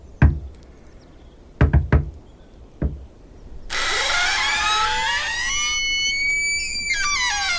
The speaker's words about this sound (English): Oh, it's nice, this, isn't it? It's a nice cottage. Yeah, lovely. Do you want to knock on or do you want me to knock on? Go on, you knock on. Treat yourself. Okay. Do an elaborate knock.